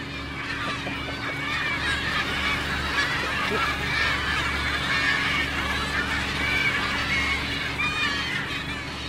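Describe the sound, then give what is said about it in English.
A crowd of about 500 gulls and gannets squawks and cries continuously behind a fishing boat, waiting to be fed leftovers going back to the sea, many overlapping calls over a steady low engine drone. “Deck now after the seagulls.”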